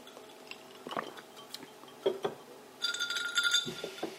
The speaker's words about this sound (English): That's the ice in the glass.